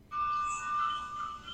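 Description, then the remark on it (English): A loud electronic alarm blares continuously, a steady high-pitched tone around one pitch with bright overtones, starting abruptly and holding for over a second without any talking. “I hear a massive alarm.”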